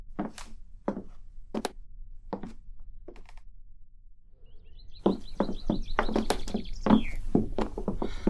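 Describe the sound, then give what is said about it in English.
A few sharp knocks or footsteps sound, then caged orioles, among a variety of birds kept in cages in Mrs. Howland's room, break into bright, warbling song, with busy chirps and rustling clatter. “Howland keeps a variety of birds in the cages up in her room.”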